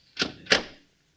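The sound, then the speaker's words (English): A refrigerator door opens in the Gildersleeve kitchen: two quick clunks, a latch click and then a thud about a third of a second later, with a brief fading rattle and no voices. “Just thought I might have a little snack before I go to bed. See what's in the refrigerator.”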